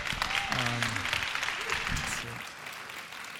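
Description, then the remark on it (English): An audience at a church service applauds after a scripture reading, with dense, steady clapping throughout, a few voices audible beneath it, the applause easing slightly in loudness toward the end. “And let's give them a round of applause as we...”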